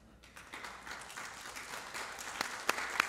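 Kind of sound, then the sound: crowd, audience clapping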